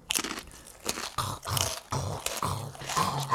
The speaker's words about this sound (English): I can barely hear you over all that crunching. What are you eating? Granola.